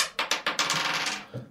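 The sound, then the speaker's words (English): Dice clatter across a hard surface: a few sharp bounces, then a quick rattling tumble that settles after about a second, fairly loud, with no voices. “Am I rolling this for myself?”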